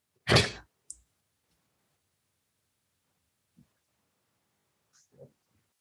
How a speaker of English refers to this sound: It's a lot of noises being made for a door that's not budging. It's not supposed to work.